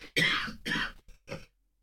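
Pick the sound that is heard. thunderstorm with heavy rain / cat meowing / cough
cough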